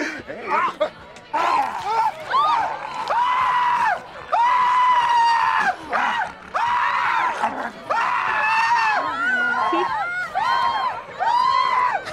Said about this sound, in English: I just love, like, the direction here is scream in each other's faces over and over. Don't laugh or we're going to do it again.